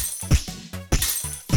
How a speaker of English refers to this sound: All the glass starts breaking, and you're seeing all these Mountain Dews specifically blowing up.